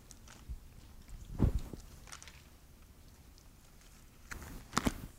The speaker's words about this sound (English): I like the sound of pages turning, real Bibles.